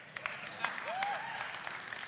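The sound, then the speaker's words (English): An audience, mostly women, claps in a steady, dense patter of many hands, moderately loud, with a brief cheer or whoop rising above the applause. “Why is it only the women are clapping right now?”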